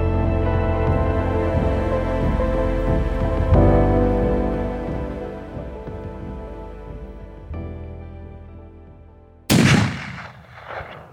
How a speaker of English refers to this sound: The gunshot ripped a hole through his body.